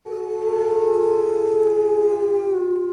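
A wolf howls in one long, steady, mournful note that holds for several seconds and sags slightly in pitch toward the end, loud with nothing else around it.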